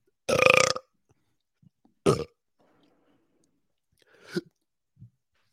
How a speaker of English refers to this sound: I can burp on command. Ready?